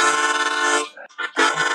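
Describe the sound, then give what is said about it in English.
A chromatic harmonica mimics a train whistle: a loud, reedy chord held for most of a second, a brief choppy dip, then another strong wailing blast. “You're kind of like sounding like a train at some point. So you got like a train whistle going on.”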